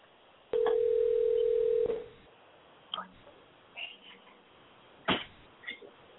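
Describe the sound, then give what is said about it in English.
A single steady electronic ring tone on a phone line, lasting over a second, followed by a quiet line with a few faint clicks and soft taps. “There's some lonely person out in America that will answer their phone.”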